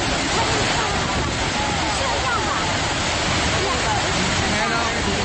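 Niagara Falls, a massive waterfall, roars from close range, heard standing right next to it: a loud, steady, unbroken rush of crashing water filling the whole sound with dense, hissing noise from start to finish.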